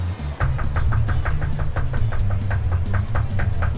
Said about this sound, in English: I'm coming, hold on. You can stop knocking, I heard you.